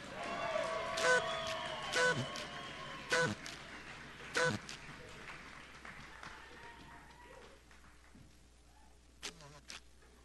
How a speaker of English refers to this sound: You can hit the tables, or if you want to stomp your feet, you can stomp your feet. So I'm going to say yay, God, and then we're just going to make some noise.